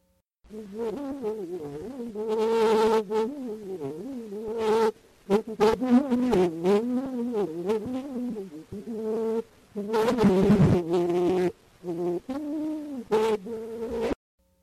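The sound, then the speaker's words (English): A thin, buzzy singing voice carries a wavering melodic line through an early, crackly phonautograph recording made by Scott in September 1860, probably a line from 'Vol Petite Abeille' (Fly Little Bee) from Victor Massé's French comic opera La Reine Topaz. The pitch glides and trembles, with brief dropouts, and it ends abruptly. “The final one of all probably was a line from the song Vol Petite Abeille, or Fly Little Bee, from a recent French comic opera called La Reine Topaz by Victor Massé.”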